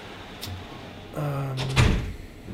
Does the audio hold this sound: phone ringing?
no